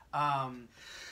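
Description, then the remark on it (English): A single loud sneeze bursts out suddenly with a strong voiced tone, lasting about half a second before fading into quieter background noise. “God bless you.”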